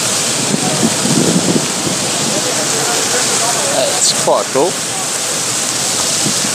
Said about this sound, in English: Yes, there's a water display outside Terminal 5 here at Heathrow that I'm currently enjoying.